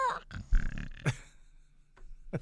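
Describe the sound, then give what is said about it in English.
A person imitates a drawn-out snore, a low rasping, guttural rumble lasting about a second, followed by a couple of brief, fainter snorting bursts. “I like how my snores are getting progressively longer.”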